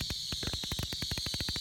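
A 252-shot fireworks cake fires in a rapid, steady string of deep thumps, roughly a dozen sharp pops per second blending into a continuous loud drumming over a constant hiss.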